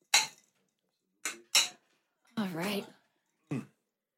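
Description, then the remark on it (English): Drinks after a toast: a few sharp, bright clinks and taps of glassware, then a drawn-out voiced sigh of satisfaction and one last short clink, all fairly quiet. “Audible drinking.”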